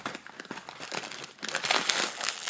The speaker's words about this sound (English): And opening up the beans.